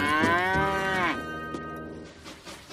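A cow moos loudly, one long drawn-out bellow with a falling pitch, followed by quieter lowing and rustling as it fades out.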